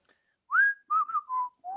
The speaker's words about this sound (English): You know, the real question is, where did that whistle come from?